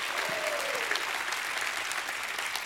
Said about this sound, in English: Can someone bless God and give him a hand clap and a shout of praise?